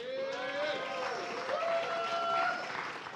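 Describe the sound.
A crowd applauds steadily for a few seconds, dense clapping filling the room, with a few voices cheering and calling out over it.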